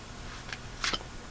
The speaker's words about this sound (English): You put it back in the deck, you shuffle. I'm not going to spend long shuffling because I want to get to the point.